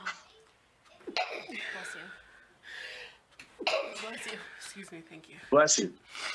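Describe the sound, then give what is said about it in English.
Several sharp sneezes in quick succession, with gasping inhales and breathy sounds between them. Muffled voices murmur underneath. “Bless you again, and that will be the last one you get, because after that you're just trying to get free blessings.”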